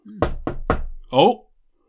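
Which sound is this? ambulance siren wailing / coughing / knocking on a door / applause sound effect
knocking on a door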